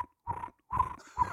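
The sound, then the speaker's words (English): A person whistles three short, steady-pitched bursts in imitation of a cricket chirping, with brief pauses between them and no talking. “my cricket noise. Sorry. Yeah, I got it. Better whistler than I thought.”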